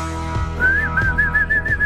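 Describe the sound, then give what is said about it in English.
Someone whistles a short, bright tune, a series of clear sustained notes gliding slightly in pitch over a steady low background hum. “We just whistling all before the show because we got a great day here.”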